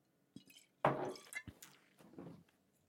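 Someone drinks straight from a bottle during a toast: a short click, then a loud burst of wet glugging, followed by a few softer swallows and liquid slurps, with no talking.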